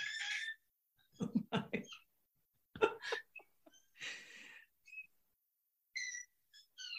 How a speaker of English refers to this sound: So dramatic. This episode is full of bird sounds. I love it.